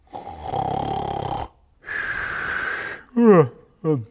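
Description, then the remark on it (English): A voice imitates Peter snoring, with two long, rasping inhaled snores, followed by a couple of short snorting exhales. The sounds are fairly loud, with no other talk. “After these bold declarations, he's snoring while Jesus pours out his soul.”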